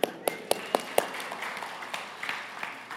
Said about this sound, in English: Applause.